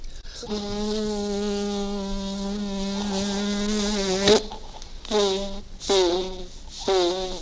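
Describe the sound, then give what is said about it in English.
A voice imitates a mosquito, as played in the Columbia CBS series The Man Behind the Gun, with a long, steady, nasal buzzing whine, followed by three shorter buzzes that dip in pitch, fairly loud, with no other talking. “He was hired to play a mosquito on a big Columbia CBS series called The Man Behind the Gun.”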